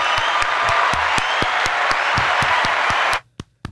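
A crowd applauds in a dense, steady wash of clapping for about three seconds, then it cuts off abruptly, leaving a couple of isolated claps.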